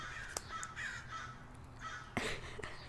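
Crows caw in short, harsh bursts against a low outdoor rumble, several calls spaced irregularly, fairly loud, with no one speaking.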